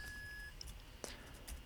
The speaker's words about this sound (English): That beep was the hot pad on my back. I was wondering. I was like, did I just have a little case of tinnitus?